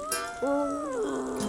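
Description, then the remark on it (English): A coyote howls in one drawn-out, wavering cry, its pitch rising then sliding slowly downward with a whiny, nasal edge, fairly loud and with no talking. “Coyote singing. It was a bad song made worse by the vocalist.”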